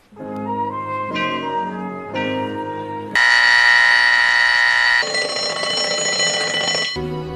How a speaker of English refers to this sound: His alarm is set for 4 o'clock in the morning.